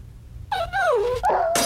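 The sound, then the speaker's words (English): A dog lets out a drawn-out, high-pitched whine whose pitch slides down and back up, then breaks into a sharper yelp near the end. It is heard alone, without talking. “Ooh, another jumper. Bring in the next dog.”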